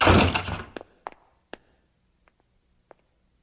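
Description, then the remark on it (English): Someone pounds on a door: a loud, rattling burst of blows, then a few spaced, irregular thumps that grow fainter and more sparse, with no voices. “Open this door! Open it now!”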